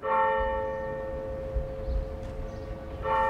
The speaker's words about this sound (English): I remember hearing the church bells as well.